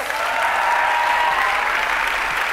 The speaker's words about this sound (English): She deserves all of that applause.